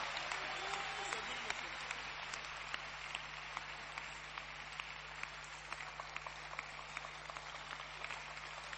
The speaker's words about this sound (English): You clap well. Clap well. Clap, clap, clap. It's a good message. Clap.